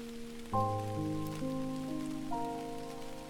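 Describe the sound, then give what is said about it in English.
Steady rain patters softly in the background beneath sustained, slowly shifting synthesizer chords, the calm music sitting louder than the rainfall throughout. “you feel the endless abundance of this rain.”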